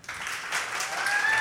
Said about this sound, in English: Oh, there's cheering involved. Emphatic yeses.